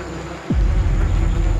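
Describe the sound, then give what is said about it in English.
A steady drone of aggressive bees buzzing around a very dangerous hive in a residential area fills the air, with a sudden gust of low, rumbling wind noise washing over it partway through. “Let's just stand here for a minute and see how aggressive these bees are.”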